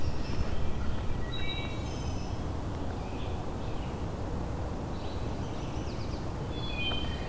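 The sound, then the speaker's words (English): Two wood thrushes sing faint, flute-like phrases now and then among old tulip trees, hemlocks, maples and oaks, over a steady rushing background of wind or running water, with no one speaking. “I'm hearing a couple singing right now.”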